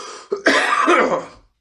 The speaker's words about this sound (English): But today, sorry for all the coughing.